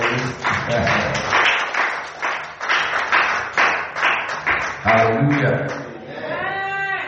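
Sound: audience clapping hands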